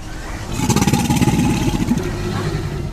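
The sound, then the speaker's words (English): An American alligator bellows: a deep, rough, engine-like rumble that swells loudly for about a second and a half with a fast pulsing vibration, then fades into a low drone. “This is what an American alligator sounds like.”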